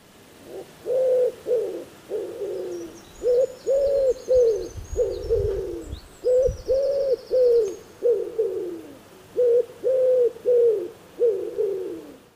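A wood pigeon's soft, husky cooing song repeats in rhythmic phrases of several notes, clear, with faint higher bird chirps in the background.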